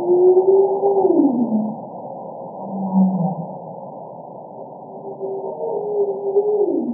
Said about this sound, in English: That was a humpback whale singing.